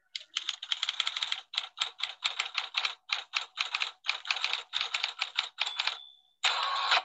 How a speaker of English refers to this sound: I thought for sure I heard, I know I can't distinguish the sounds of the keys, but I heard an R-Y-A-N in there.